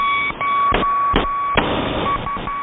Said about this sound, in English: Number stations have been around since the First World War. Back then, these numeric messages were often sent using Morse code.